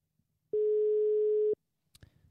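One long, steady electronic telephone ringing tone sounds for about a second, followed after a short pause by a sharp click and some faint rustling, as if the handset is picked up.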